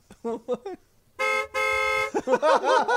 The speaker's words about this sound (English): That's the sound it makes when she puts her finger in there and farts. No, that's just her locking her car by clenching her butthole. She has her keys in there.